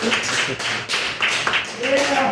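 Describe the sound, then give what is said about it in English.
Steady crowd applause for the bar team fills the whole moment, a dense wash of clapping with voices calling out and cheering over it toward the end. “Applause for the bar team!”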